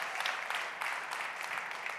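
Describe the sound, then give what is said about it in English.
A church audience claps together in steady, dense applause, many hands overlapping into a continuous bright patter that swells slightly in waves for a couple of seconds, with no voices on top, celebrating 108 people giving their lives to Jesus. “Come on, clap like it's for you.”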